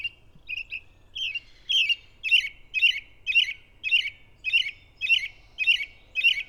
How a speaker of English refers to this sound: An American robin just landed overhead.